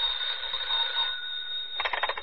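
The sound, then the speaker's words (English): A telephone rings with a shrill, steady electronic trill that breaks into rapid pulsing bursts near the end, fairly loud, with no voices. “A few minutes after the grandfather clock struck 11, the telephone rang.”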